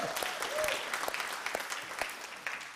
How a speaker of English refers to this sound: So let's give a round of applause for the King James people for holding it down. Yes, thank you.